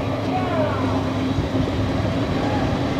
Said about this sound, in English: Oop, there comes another train.